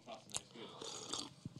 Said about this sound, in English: Oh, sorry, you got that slurp right in the mic. My bad.